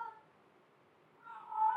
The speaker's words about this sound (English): I know, Wayne is crying in the back, our cat over here. And I just go, I wanna, hang on. Why are you crying, buddy? Are you crying? Are you crying, Wayne? Listen to him.